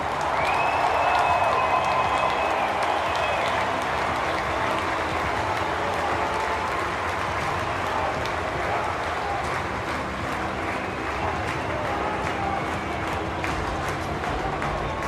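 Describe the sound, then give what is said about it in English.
A large crowd at a New York Mets baseball stadium applauds and cheers the 2022 Mets All-Timers before a game: a dense, loud wash of clapping and voices with a few whistles rising above it throughout. “Let's hear it again for your 2022 Mets All-Timers.”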